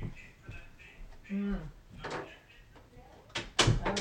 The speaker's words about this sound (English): And just a minute, let me close my door.